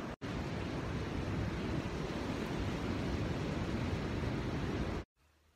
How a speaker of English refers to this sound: And it's really nice to get these free ocean waves, sound waves and actual waves in the background. And I'm talking a bit louder, realizing that might be hard to hear.